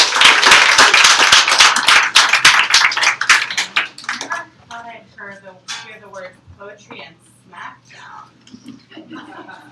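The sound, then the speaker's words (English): Applause from an audience at a reading event, welcoming the first reader of the night: a dense burst of many hands clapping loudly for about four seconds, then fading out as a single voice begins speaking. “Give it up for”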